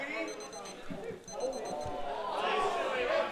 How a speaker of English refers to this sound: There's the whistle for half time, and at the break,